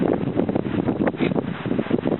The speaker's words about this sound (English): Well, it's pretty windy